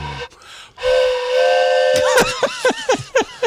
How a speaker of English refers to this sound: In the background, yes, I could hear the steam engine.